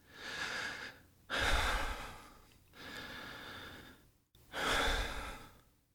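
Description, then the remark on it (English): Slow, deep relaxation breathing: two full cycles of long, airy inhales followed by heavier, sighing exhales, steady and unhurried with short pauses between, and no one speaking. “I'm already doing the breathing thing.”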